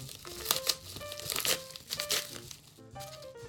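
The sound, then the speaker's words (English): Crinkly gum packaging being torn and opened, a run of crisp crackles and rustles over about three seconds, with a faint tone humming underneath. “Okay, should I open one of mine?”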